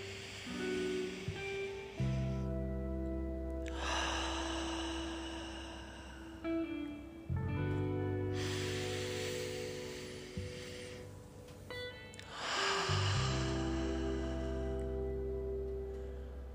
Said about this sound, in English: Inhaling for a four count in through your nose. Exhaling for a four count out your mouth. Repeat that. Inhale for four. Exhale for four. Two more of those.